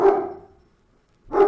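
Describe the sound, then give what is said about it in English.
Two sharp dog barks, one at the start and another just over a second later, with silence between them; they sound fairly loud, with no talking. “Well, I don't know what my dogs are doing today, but that's pretty cool.”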